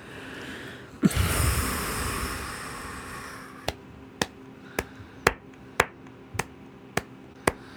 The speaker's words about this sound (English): It's you're getting an applause there.